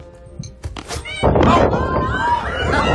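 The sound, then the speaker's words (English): A soft thud, then a cat meows in drawn-out, wavering cries over a busy, noisy indoor background, moderately loud. “You got a lot of cats.”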